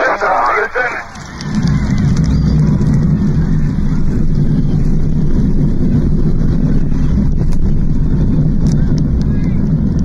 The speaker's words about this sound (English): imagined the day on July 16, 1969, when the Apollo 11 Saturn V lifted off from Kennedy Space Center Launch Complex 39A on Merritt Island, Florida.